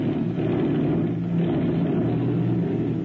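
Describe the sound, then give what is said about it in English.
A propeller airplane engine runs as the plane is about to take off at night from a ranch hidden in the hills south of Juarez, Mexico: a loud, steady low drone with a throbbing hum that holds at a constant level throughout, with no voices. “The airplane has been pushed out and is about to take off from the ranch.”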